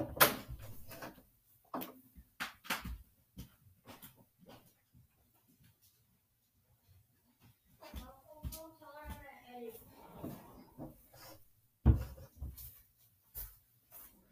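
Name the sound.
door opening and closing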